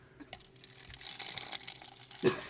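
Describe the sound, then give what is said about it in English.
A man pours liquid steadily with a soft, continuous splashing hiss, fairly quiet, ending in a brief louder splash near the end. No one speaks. “As he pours.”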